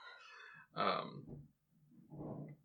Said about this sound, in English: You guys might be able to hear my cat throwing a fit, because she's not allowed in the basement.